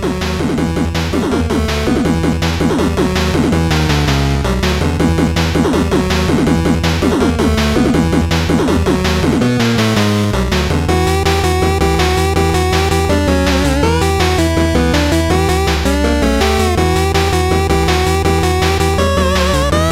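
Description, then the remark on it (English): An energetic video game stage theme, Solar Man's stage track from a Mega Man game, plays loud and steady, with driving repeated bass notes, punchy percussion hits and a bright melodic lead that shifts pattern midway through. “Last but not least, Solar Man. And this is my pick for the best track in this game.”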